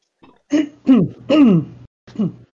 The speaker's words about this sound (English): You'll have to excuse me coughing a lot at the moment. The coffee's destroyed me and I'll still drink it.